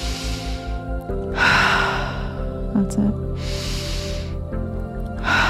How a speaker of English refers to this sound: Just breathing in through your heart. Imagine that your heart has nostrils and that the air going in is going straight into your heart and straight out.